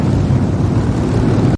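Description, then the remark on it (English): A dense, loud, low rumble of many motorcycle engines approaching, droning together, steady and continuous for about a second and a half before cutting off abruptly. “You can hear the rumbling.”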